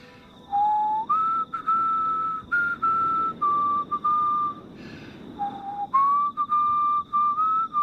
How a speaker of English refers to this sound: Do you have to whistle? It's a lullaby.